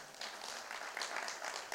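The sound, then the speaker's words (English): A crowd applauds the speaker's parents, a dense, steady wash of many hands clapping at a moderate level for a couple of seconds, with no voices rising above it. “Round of applause for my parents.”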